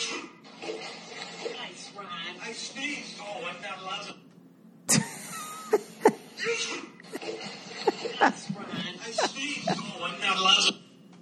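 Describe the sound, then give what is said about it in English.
A man lets out a single sudden, loud sneeze partway through a video clip, cutting into ongoing chatter beside a pool, making a cat jump into the pool; excited voices and laughter follow. “This guy sneezes, makes the cat jump and land in a pool.”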